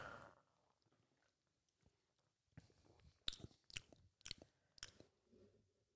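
Wet mouth smacking as someone clears their palate after a tasting sip of Danger Beach: a few soft lip and tongue clicks at first, then four louder, sharp smacks in quick irregular succession, like chewing with nothing in the mouth. No talking.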